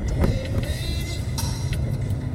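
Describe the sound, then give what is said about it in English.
Steady low engine and road rumble fills a car cabin, with a few faint clicks and brief rattles, heard from inside the moving vehicle with no one talking. “Hey, y'all, we recording live from the car.”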